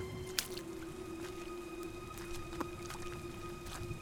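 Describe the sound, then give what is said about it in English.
A faint, steady trickle of light rain misting down from the sky at the Ringfort on the moors in winter, with a few soft, wet drips popping out here and there, over a constant low hum. No one speaks. “The drivers arrived to silence, broken only by the faint trickle of rain misting down from the sky.”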